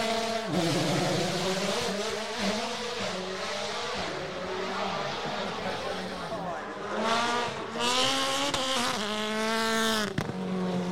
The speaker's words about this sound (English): Sounds pretty awesome too, isn't it? It's very Hoonicorn-ish. Like, it's, you can tell it's the Subaru version of the Hoonicorn Mustang. Kind of.